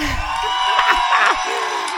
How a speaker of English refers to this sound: So, ladies and gentlemen, I'm going to add an applause right here.